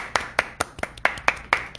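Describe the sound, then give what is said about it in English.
A single person claps steadily about seven times, sharp close-up claps evenly spaced at a brisk rhythm, with no talking. “Clap it up.”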